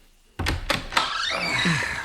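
A door bumps and clunks open with a few sharp knocks, followed by a sustained scraping, rustling movement as someone covered in dirt comes through the door of the Adlernest in the evening.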